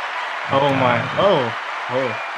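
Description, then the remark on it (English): Steady clapping from a crowd fills the background, with a few drawn-out cheering voices rising and falling over it, ending in a sharper burst. “I gotta hit you with the applause, dude.”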